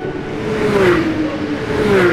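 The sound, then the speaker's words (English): Loud roar of NASCAR race cars speeding by on a track, a high engine whine that dips slightly in pitch over a constant rushing noise, with no talking. “What sport is this? NASCAR racing!”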